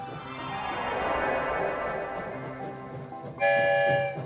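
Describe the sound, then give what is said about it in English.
A train rumbles along with a steady, broad roar, then a loud horn-like toot bursts in near the end as it emerges from a tunnel, the tone sharp over the rolling noise. “Here comes the end of the tunnel.”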